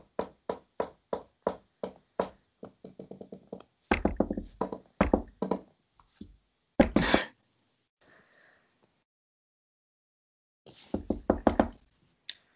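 Someone knocks on an office door: a quick, evenly spaced run of raps, then heavier irregular thumps and a loud bang, a quiet pause, and a final burst of knocking.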